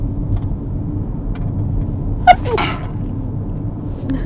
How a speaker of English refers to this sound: Oh no, I got a sneeze.